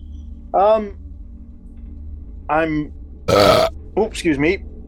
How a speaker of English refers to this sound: I ate a 1.2 kilogram Cumberland pie for my tea tonight, listeners, so that's why I just belched there.